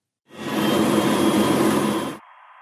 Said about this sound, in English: you'll first of all hear this noise, which is all the kind of machinery going on, and then I fade in the inverse of that noise on top of the original, and you'll hear it, how it cancels out the original sound and virtually gets rid of it.